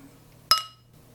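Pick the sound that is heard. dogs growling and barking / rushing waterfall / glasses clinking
glasses clinking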